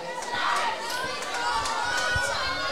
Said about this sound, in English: Nice calm strike from Lara Wharton. Makes it 1-0 Tarmor. The crowd, as if they hadn't already, have found their voice.